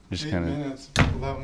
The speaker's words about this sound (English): Close the door. Yeah, I'm already going. Lock the door.